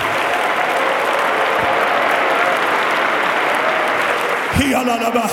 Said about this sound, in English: One more time, let's clap our hands together and give God the praise.